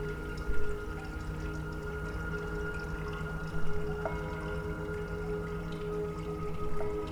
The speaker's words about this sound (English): The first time that Yamamoto saw the completed work, it was a moment when the gong that you've just heard, perhaps, played as he walked through the door. And of course, that's a temple gong, and it was recorded in Tokyo in a Buddhist temple.